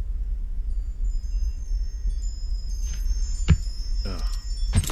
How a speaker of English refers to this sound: I didn't hear the wind chimes before.